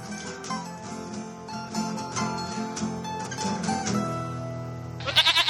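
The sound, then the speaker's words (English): Two goats bleat back and forth in long, wavering, nasal cries that overlap, ending in a sharp, quavering burst. The calls are loud, with no talking. “It's two goats.”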